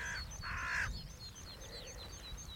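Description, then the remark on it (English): One of a couple of large carrion crows on a hillside of stony spoil heaps gives two harsh, raspy caws in quick succession, then falls silent while thin, faint chirps from small birds continue over a low outdoor rumble. “But I'm going to push on to the top now, and I'm going through sort of spoil heaps of stones, meadow pipits, a couple of large carrion crows.”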